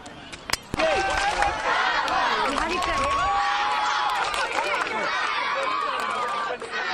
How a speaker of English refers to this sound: Actually, the yells going on with regards to the kabaddi match that's going on at the moment.